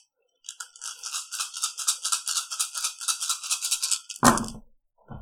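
Dice rattle steadily in a cup for a few seconds, a rapid clicking, then spill out onto a table with a single sharp clatter. No one speaks.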